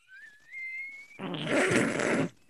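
A rising whistle tone glides upward for about a second, then a loud, long, raspy fart erupts and sputters for just over a second before cutting off, with no talking.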